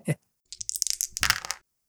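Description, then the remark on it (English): Percentile dice being rolled to determine the weather: a quick knock, then about a second of bright, rapid clattering clicks as the dice tumble and settle, with no talking over it. “So if you can roll a percentile dice,”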